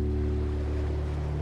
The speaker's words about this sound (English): And then you're by the water and you can hear the waves. You can hear the waves coming in and then going back out to the deep ocean.